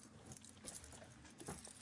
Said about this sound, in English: Why don't you throw your keys over to Ronnie so he can count and make sure all your keys are there today also.